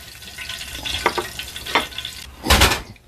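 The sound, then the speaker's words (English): Hot oil crackles and sizzles steadily as chicken fries, with a few sharp pops and a louder burst of spattering near the end. No one speaks. “And I'm going to pull this out of the grease.”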